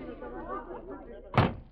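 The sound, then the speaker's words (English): A low murmur of chatter from admirers jamming the corridor outside a dressing room fills the background, then the dressing room door shuts with a single solid thump near the end. “I had to force my way to a door.”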